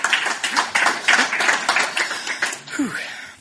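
An audience applauds steadily, a dense wash of many hands clapping at once, with a brief voice rising through the crowd noise near the end.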